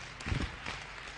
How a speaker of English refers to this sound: Clap your hands better.